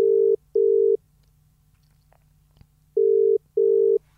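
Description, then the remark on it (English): A telephone ringback tone sounds twice in the double-burst pattern as a call is placed to someone: two short steady beeps, then a pause, then two more. The tones are clear and fairly loud over a faint low hum, with no voices. “But let's try and dial him in now.”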